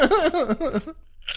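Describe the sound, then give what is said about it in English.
A voice speaks for a moment, then after a brief pause comes a single sharp crunch of someone biting into a crisp chip. “stole the crunch.”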